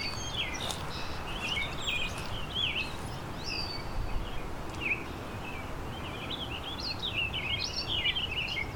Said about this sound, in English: The warbling vireo again. There's an American robin and a red-winged blackbird and song sparrow. There's the warbling vireo again.